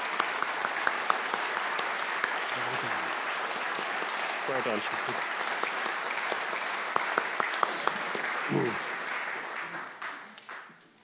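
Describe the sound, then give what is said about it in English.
A crowd claps for the actors in a steady, dense round of applause lasting about nine seconds before tapering off, while a voice speaks briefly over the clapping. “Shall we have a round of applause for our actors down here?”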